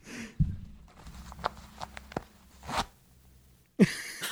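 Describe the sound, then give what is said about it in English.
A man's pants zipper is pulled close to the microphone, giving several short raspy zips with small clicks and ticks between them, ending in a louder final pull. No one speaks. “Good zipper noise. What zipper was that? My I think pants? It was his pants.”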